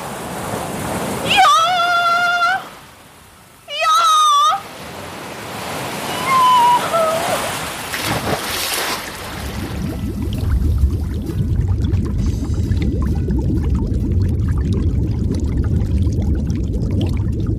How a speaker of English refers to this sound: the rain was coming so fast, and the wind was blowing so hard